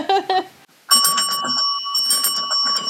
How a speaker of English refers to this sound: Where's your bell? Oh yeah, the trash bell.